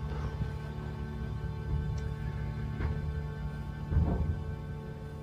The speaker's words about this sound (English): Thunder. Did you hear that? It might have been.